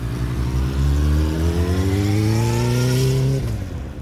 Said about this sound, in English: Gosh, I'm amazed how she jumps on the back of that motorbike.